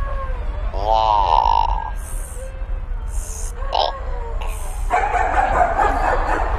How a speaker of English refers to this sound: They really ought to put a muzzle on those dogs.